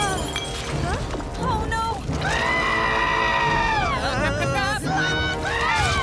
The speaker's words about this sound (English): I got a kick out of the screaming blob. Oh, the snail thing? The screaming snail thing.